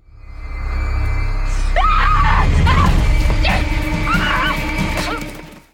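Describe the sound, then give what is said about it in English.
A woman screams as the character Mona in several shrill, wavering bursts, loud, over a heavy rumbling background noise that runs throughout. “Okay, here's Mona's real scream.”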